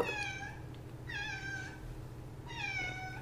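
A cat named Kitty meows three times in a steady sequence, each call drawn out and clear, with a low background hum beneath and no one talking.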